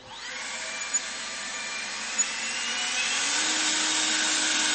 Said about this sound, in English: I'll show you something about this leaf blower. See this little knot thing here?